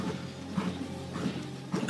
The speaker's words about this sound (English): Lordy. Got a bit of hiccups there. Hope they didn't transmit through the microphone.